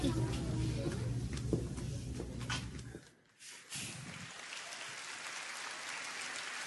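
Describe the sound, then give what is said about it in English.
An audience claps in a dense, crackling wash, briefly dropping off near the middle before the applause swells back and carries on steadily. Low murmuring voices sit under the first half. “And they're applauding that.”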